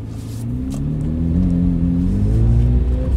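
A brown Corvette Z06 convertible's engine rumbles loudly at startup, its deep idle rising into a revving growl with climbing tones, steady and aggressive throughout with no talking.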